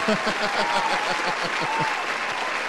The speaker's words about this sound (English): Let's give a clap.